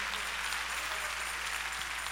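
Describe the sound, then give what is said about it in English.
A crowd claps hands in praise to God in a steady, dense wash of applause that stays even in loudness throughout, with no voices standing out and a faint low hum underneath. “Come on, clap your hands and give praise to God.”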